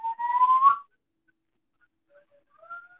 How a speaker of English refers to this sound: Who's whistling? My grandbaby.